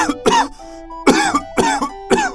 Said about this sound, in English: But the coal was very warm. But it made the air very smoky. Everyone started coughing on the streets of London.